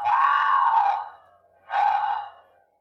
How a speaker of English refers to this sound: You got to be subtle. So I'd wait 3 minutes maybe and then hit it again with the mountain lion and heat sound.